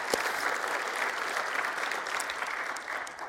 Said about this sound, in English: Come on, if one person's gonna clap, we may as well all do it.